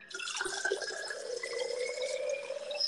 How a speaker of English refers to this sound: That water must be good. I heard it all. Heard it all. That was that good water. It sure was.